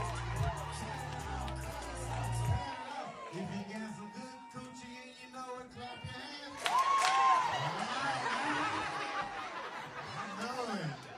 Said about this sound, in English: Crowd's hyped. That was pretty great.